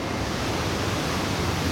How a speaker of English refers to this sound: Oh, another huge wave just crashed across the deck. Whoa, don't know if you can hear that. One of the French operators had to leap on top of the forklift truck to stop himself getting washed overboard.